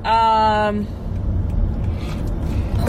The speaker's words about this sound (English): That car. I thought that car was going to hit us.